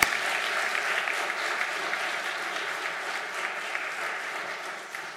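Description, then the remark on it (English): Sustained audience applause given as a hand clap of thanks to God for the next generation, a dense wash of many hands clapping at a steady, fairly loud level throughout, tapering slightly at the end. No voices are heard over it. “So let's thank God with a hand clap for all he's doing for the next generation.”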